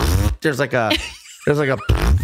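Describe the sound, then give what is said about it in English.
A voice imitates a ripping, queef-like sound in a few raspy, buzzing bursts with a short break in the middle, loud with no clear words spoken. “See, I could tell the difference between a queef and a fart because to me, queefs don't sound like a fart. They sound more like ripping, like a”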